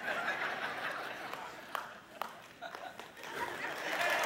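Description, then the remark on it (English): A church audience claps together after a short sermon, in a dense, steady wash of applause, with a few sharper claps standing out, mixed with cheerful murmuring and light laughter throughout. “That's a sermon on clapping at the crossing.”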